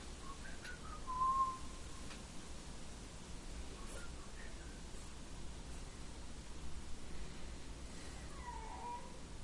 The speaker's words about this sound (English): Whiny dog. Maybe.